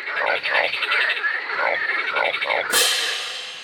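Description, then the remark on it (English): A crowd of frogs croaks in a busy chorus, with repeated rhythmic calls overlapping, followed near the end by a sudden burst of rushing, hissy noise. “The boy frog was crowded by other frogs.”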